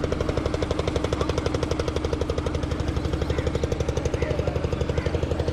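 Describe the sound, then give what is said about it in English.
A boat engine chugs steadily with a rapid, regular knocking pulse, loud, holding an even rhythm throughout with no voices; a boat going by on the Ganges river. “Just listening to that engine.”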